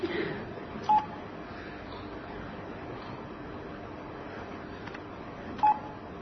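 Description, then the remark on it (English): Two short, clear electronic telephone ring tones sound about five seconds apart during a talk, each a brief steady beep over a constant low background hiss, with no one speaking. “No one ever calls me.”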